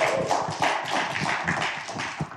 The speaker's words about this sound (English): I'm just going to trust that you weren't here if you weren't clapping.